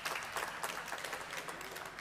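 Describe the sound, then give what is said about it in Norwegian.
An audience at an evening Christian meeting applauds to welcome speaker Jan Hanvold, many hands clapping together in a dense, continuous patter at a moderate, even level with no voices on top. “Jan, en skikkelig klapp.”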